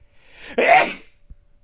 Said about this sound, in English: I'm going to sneeze.